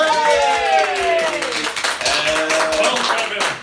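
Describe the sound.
Steady applause, with many hands clapping in a dense, continuous patter, while a voice calls out over it with drawn-out, sliding tones.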